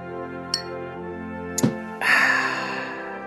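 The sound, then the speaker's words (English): Two quick, light metallic clinks of aluminum cans tapping together in a New Year toast, spaced about a second apart, over a steady humming tonal background that swells louder near the end. No one speaks. “I raise a aluminum can to you, sir. Cheers and Happy New Year.”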